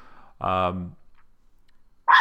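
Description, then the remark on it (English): A single loud dog bark rings out with a tonal, drawn-out quality, followed by quiet and then a short burst of noisy sound near the end. “And hey, it's not a Rock'em Nation podcast without a dog bark.”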